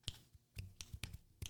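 Several soft, dull finger-snap attempts, about five muted clicks at irregular intervals, close but faint, none ringing out as a crisp snap.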